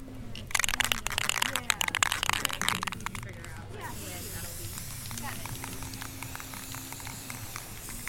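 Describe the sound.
Loud hissing bursts of spray paint onto a cardboard sign in quick succession for a few seconds, as the sign is prepared for a march for missing and murdered Indigenous women; then the spraying stops while voices keep talking in the background.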